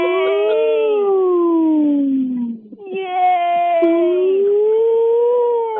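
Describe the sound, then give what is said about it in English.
A voice imitates a whale call with two long, loud moaning tones that slide down and then rise again, split by a brief pause, followed by a short cheerful exclamation. “I didn't really sound too much like the dolphin, Ataana, but it was a good whale”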